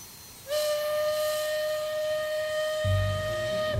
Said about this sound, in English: What was that? It was a train whistle